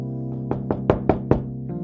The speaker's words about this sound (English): Oh, someone's knocking.